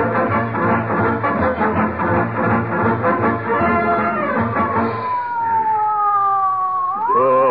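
An ambulance siren wails steadily over a dense, rumbling engine-like drone as it takes a patient to the hospital, then glides downward in a long falling tone before sweeping sharply back up near the end. It's loud and wordless.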